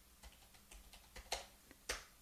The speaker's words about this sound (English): Okay, I'm typing my first name.